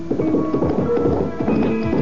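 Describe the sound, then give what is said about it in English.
Steady clip-clop of a ridden horse's hooves in a quick, even rhythm, moderately loud, with a faint patter like rain behind it and no voices. “I looked in on my snoring cousin, breakfasted on black bread and brandy, and saddling my horse, rode for the alchemist's isolated home.”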